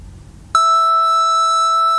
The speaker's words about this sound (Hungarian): Ez meg már hallható, hogy ez ilyen granulár mintet, tehát ez már egy tök ilyen szinti hangszín, ez már így nagyon ki kellett simítani,